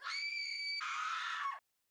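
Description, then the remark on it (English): A scream sound effect: a single loud, high-pitched scream lasting about a second and a half, sustained and shrill, then breaking into a rougher, strained wail before cutting off abruptly into silence. “Okay, so I scream. I can add scream here.”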